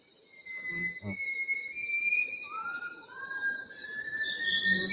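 A bird of unknown species, some variety of whistling thrush, sings in the Sumatran rainforest: long, pure whistled notes that slide slowly upward, with higher bright phrases near the end, all over a dense, steady chorus of insects.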